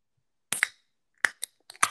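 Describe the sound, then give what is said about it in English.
A Diet Coke can being opened: a cluster of sharp, bright metallic cracks and clicks, a couple at first and several more a moment later, with hardly any fizz and no voices. “Okay, I'm gonna open my Diet Coke.”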